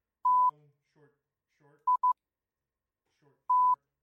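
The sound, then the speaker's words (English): A phone emits steady electronic beeps in a pattern: one long tone, a quick double beep, then another long tone, with faint murmuring voices in the gaps between them. “Phone's just being goofy. For the record, the pattern that you think might be going is...”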